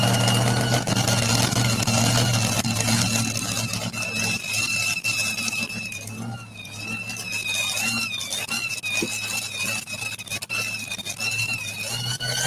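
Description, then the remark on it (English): A heavy truck engine, David Hunt's truck called Shameless, built new from the ground up, roars steadily, its deep rumble holding throughout while a high, wavering whine rides on top; no one speaks. “Oh, the next machine coming around.”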